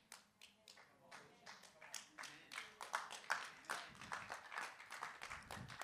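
A crowd clapping in a steady, irregular patter of sharp hand claps, moderately loud and growing slightly stronger toward the end, with no clear talking over it.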